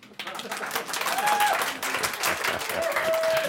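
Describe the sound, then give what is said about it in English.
A large audience claps steadily and densely for a few seconds, the applause sustained, with a brief whistle and faint crowd voices mixed in. “Otherwise, you wouldn't be sitting here listening, taking part, laughing, applauding.”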